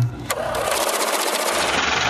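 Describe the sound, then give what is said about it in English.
A money counting machine whirs steadily as it riffles through bills, a rapid fluttering buzz of paper slapping past, fairly loud and continuous for about two seconds with no voices. “That's my money machine, Jonas, counting Fez's money.”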